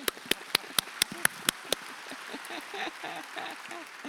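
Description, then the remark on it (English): Audience applause: about seven sharp, evenly paced claps ring out first, then give way to a softer, denser patter of clapping mixed with chattering voices. “All right, let's applaud them.”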